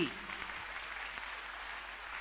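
A large church audience claps steadily for the Lord, a dense wash of many overlapping hand claps holding at an even, fairly loud level throughout.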